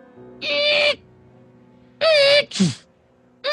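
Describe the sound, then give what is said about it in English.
A voice mimics a chair pushing itself sideways, trying to scoot around to the other end of a table, with loud, reedy, squeaky bursts in a stop-start rhythm: one long squeal, a pause, then two quick squeaks, the second dropping into a low scrape. “as the chair begins to, like, push and move itself sideways, trying to scoot its way around to the other end of the table, to where Remus is.”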